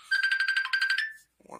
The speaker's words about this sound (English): Hold on. My phone just rang.